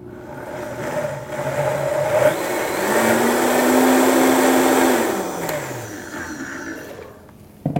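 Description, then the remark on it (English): A blender blends avocado dressing thinned with about a tablespoon of water, whirring steadily for several seconds, its motor hum climbing in pitch to a loud, even roar before winding down and trailing off, with no one speaking. “All right, so I think I'm gonna add a tablespoon or so of water to thin this out, and then we'll blend it again.”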